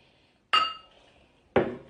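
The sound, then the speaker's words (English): Two bright clinks of glasses touching in a toast, about a second apart, the first ringing briefly with a clear glassy tone before fading. Fairly loud, with no voices. “And then you say, I'll go home and have dinner with my dog. Cheers.”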